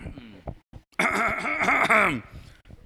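A man clears his throat in one loud, drawn-out, rumbling vocal burst with a wavering pitch, framed by softer low grunts before and after.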